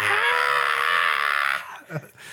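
A person lets out one long, loud, strained scream into a microphone, lasting about a second and a half, then it cuts off abruptly, leaving a few faint, brief sounds.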